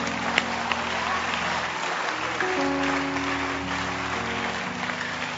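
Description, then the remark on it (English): An audience claps their hands for Abraham in a dense, steady wash of applause, with low sustained organ-like tones and faint voices underneath throughout. “Oh Jesus, can you clap your hands for Abraham?”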